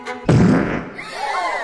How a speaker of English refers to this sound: Mrs. Elephant, was that a toot? Oh, no. It was just my chair, Mr. Mouse. It's just creaking in a really bizarre way.